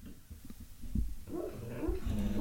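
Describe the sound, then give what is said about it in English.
A dog, O'Neal, whimpers in its sleep while having a dream, soft high whines and little muffled yips rising and falling over a low snuffling rumble, with no one talking. “O'Neal's having a dream again.”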